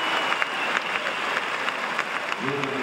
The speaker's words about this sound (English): Hush silence from the crowd, which turns into a giant roar, because that is a clear for Marcus Enning, his second of the evening, and the German crowd are in rapturous applause.